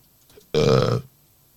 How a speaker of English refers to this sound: Sorry about that burp, guys. That was disgusting.